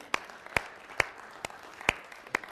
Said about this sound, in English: Hallelujah! Huh? Yeah? You want to applaud that? Do you really?